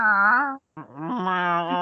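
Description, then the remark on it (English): A person imitates a cat's meow with two drawn-out, nasal vocal cries separated by a brief pause, the second longer with a wavering pitch, fairly loud. “You're too good at knowing the different meows.”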